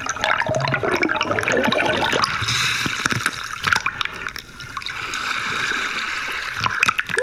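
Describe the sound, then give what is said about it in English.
Air bubbles from an air tank at the bottom of a pond gurgle and rush up through the water, opening a hole in the surface slime: a steady churning stream for several seconds with scattered sharper pops and splashes, and no voices. “The bubbles create a little opening, but look how crystal clear that is.”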